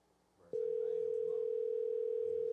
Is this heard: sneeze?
no